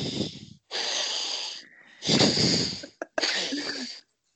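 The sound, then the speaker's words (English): Heavy, rasping breaths blown straight into a microphone that covers the breather's nose, loud, coming in about four noisy in-and-out bursts with brief gaps between them and no talking. “all I can hear is your deep breathing while you're considering what you're going to say”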